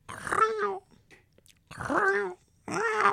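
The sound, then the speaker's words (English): Three drawn-out, growly meows from a male house cat that is not feeling well, fairly loud, each rough and low with a bending pitch, separated by short pauses. “They sound pissed off there. No, that's just how he meows.”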